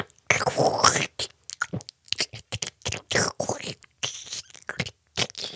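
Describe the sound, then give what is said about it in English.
A voice imitates loud, wet kissing, a rapid, irregular run of close-up slurps, sucks and smacks with brief pauses between them, with no talking. “And they're having a conversation in between the loud slurping, sucking noises.”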